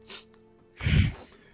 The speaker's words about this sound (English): That was a burp.